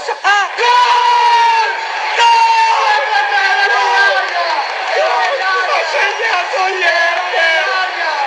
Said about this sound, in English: That sounds like one of the guys in the flats on one of the corners screaming at the telly or something.